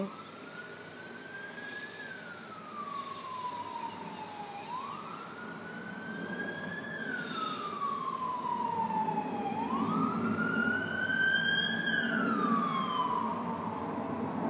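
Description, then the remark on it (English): A police car siren wails in slow rising and falling sweeps, about three cycles, over a steady background rumble of traffic. No one speaks. “Airplanes, police, cars, hammering.”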